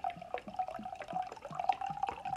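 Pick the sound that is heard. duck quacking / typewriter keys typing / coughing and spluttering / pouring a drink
pouring a drink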